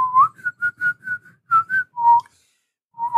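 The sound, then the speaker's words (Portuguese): A person whistles a tune, a string of short, clear pitched notes in a bouncing rhythm, then a longer held note, a brief pause, and the melody resumes. “Ah, será que ele tá cortando meus assobios porque ele acha que é barulho?”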